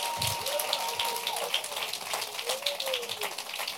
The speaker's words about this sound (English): Come on, clap your hands for Houston and Charlotte.